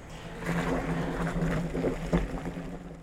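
Liquid gurgling and sloshing as hop sacks are pushed under wort, a steady churning of bubbly, watery splashes over a low rumbling hum, with no one speaking.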